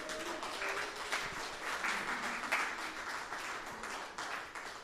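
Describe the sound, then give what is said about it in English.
A crowd at a Christian gathering claps steadily for about five seconds to welcome a speaker up, a dense, even patter of many hands at a fairly loud, constant level, with no voices standing out. “Let's give Julie a big round of applause.”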